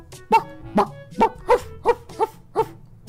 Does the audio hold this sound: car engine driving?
no